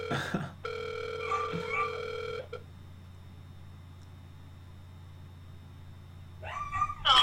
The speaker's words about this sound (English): Okay, can you please let the dogs out? They are currently barking and interrupting the podcast.